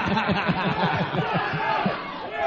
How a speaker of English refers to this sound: Wow, the crowd is in a frenzy.